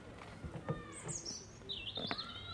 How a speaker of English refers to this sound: All you hear is the birds, usually.